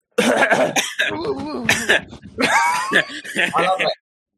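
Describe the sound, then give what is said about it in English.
A person performs exaggerated, theatrical coughing, acted out, a run of loud rasping coughs broken by strained vocal groans, lasting a few seconds before stopping abruptly. “Actor Man, you cough at me and I die.”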